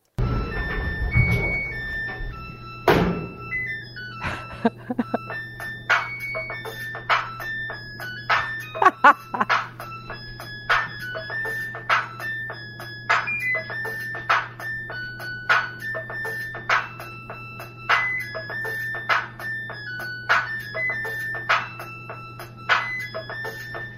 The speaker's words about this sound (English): So he just like slams this beat machine on the top of the washing machine and it makes some good music.